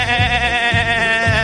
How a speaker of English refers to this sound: The sheep says meh.